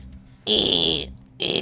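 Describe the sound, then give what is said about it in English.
A voice imitates a printing machine printing off a sheet of paper with a buzzy, raspy whir. It comes as two loud bursts: a longer one, then a pause, then a second that starts and runs to the end. “as it prints off this like sheet of paper.”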